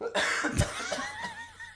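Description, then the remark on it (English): A short fit of dry coughing from a person who is a little sick: several rough bursts, the loudest near the middle, separated by breathy, slightly voiced exhales. “I'm coughing a little bit.”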